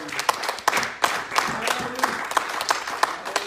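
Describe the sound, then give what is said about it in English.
A church audience claps together in praise of the Lord, a dense wash of hand claps with sharper accented beats recurring about every third of a second, fairly loud and steady throughout, with faint voices mixed underneath. “Let's give him one more big hand clap.”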